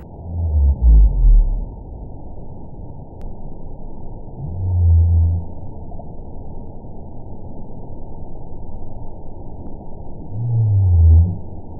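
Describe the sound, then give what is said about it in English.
Blue or fin whale song: three deep, rumbling moans recur at a slow, steady rhythm of roughly five seconds, each fairly loud above a constant hiss of underwater noise. “When you hear this voice, the thing that immediately impresses you about the blue whale song and the fin whale song is the rhythm, it's the pattern, it's the timing that means everything.”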